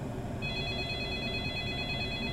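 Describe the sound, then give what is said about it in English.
An electric bell starts ringing after a brief pause and keeps going as one steady, high-pitched buzzing ring, sounding clearly over a low, constant background hum. “Well, that's the bell.”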